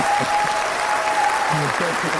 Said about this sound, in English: Can we get some applause there